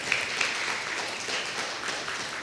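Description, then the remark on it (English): A crowd applauds steadily as someone comes up to speak, a dense wash of many hands clapping at once with no individual claps standing out, holding an even, moderate loudness throughout. “Give him a round of applause, you guys.”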